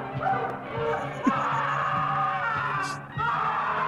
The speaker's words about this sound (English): Also, this homeboy who got his hand cut off. Or bitten off, I should say. Yeah. He starts screaming. He screams this.